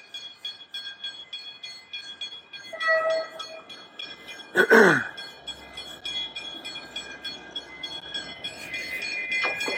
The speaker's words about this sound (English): Come on, train.